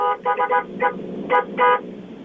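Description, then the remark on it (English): A truck horn honks in a quick, irregular series of short blasts, a few clustered together and then spaced out, moderately loud over a low background rumble, with no one talking. “I just want you to hear Horny Truck.”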